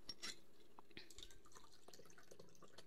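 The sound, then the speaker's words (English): Patrón tequila pours steadily into a glass with a lemon in it, with splashing, bubbling and a few bright clinks and drips over about three seconds, no voices. “Whoa, this is like pouring.”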